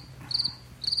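A cricket chirping sound effect: crickets chirp in two short bursts about half a second apart, a thin high trill over a low steady hum, with no voices.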